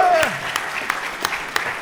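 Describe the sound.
An audience at a live event applauds in a dense, steady wash of clapping, with sharper individual claps standing out every few moments. A brief voice is heard at the very start.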